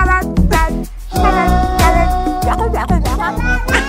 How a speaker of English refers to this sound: Why does a cat sound like a baby? I don't know why. It does, doesn't it? Very much so.